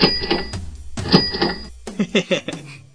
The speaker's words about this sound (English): All right, so here is my coming up on the Get Rich Quick of the episode. Cash register, please.